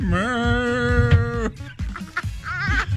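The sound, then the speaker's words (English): A drawn-out, wavering moo sounds for about a second and a half, followed by a shorter, quieter lowing call, both loud against background noise. “She's got breast implants that moo when you pinch them.”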